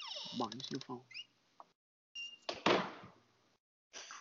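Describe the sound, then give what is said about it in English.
A drawn-out creaking squeal with a wavering, moaning pitch, like an old door swinging slowly, followed by a harsher scraping rasp and a brief trailing noise after a pause. “Man, that shit sound like a haunted house door.”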